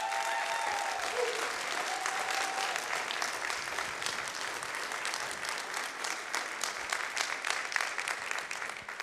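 An audience applauds and cheers for people as they follow a church member to sign up to serve, with dense, steady clapping for about nine seconds, a few brief cheers or whoops rising above it near the start, and no talking.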